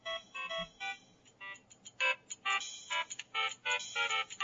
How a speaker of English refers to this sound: We're playing our Mario Brothers ringtones.